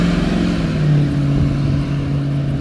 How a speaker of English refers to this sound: So, there's a shuttle bus going by.